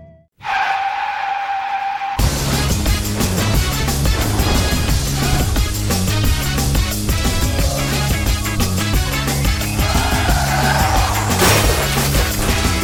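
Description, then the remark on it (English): A loud, high car tire screech holds for about two seconds, then cuts into a sudden car crash that gives way to dense, driving music with a steady pounding beat. “Keep on crashing, colliding into homes and stores.”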